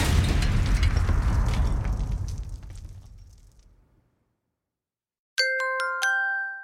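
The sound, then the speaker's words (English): A loud, booming explosion erupts and rumbles away, fading over about four seconds into silence, followed after a short pause by a bright two-tone electronic chime. “Well, that could cause an explosion.”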